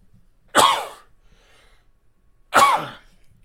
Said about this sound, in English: Man, sneezing.